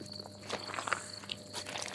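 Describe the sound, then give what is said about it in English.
Soft, squelchy footsteps on wet, muddy ground along a path at the edge of a rainforest, between tall rainforest trees and a sugarcane farm, four or five steps at an unhurried walking pace, over a faint steady hum of insects in the background. “Can you hear my footsteps on the wet ground?”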